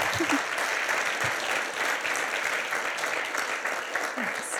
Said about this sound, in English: So thank you. A big round of applause to everyone who does this.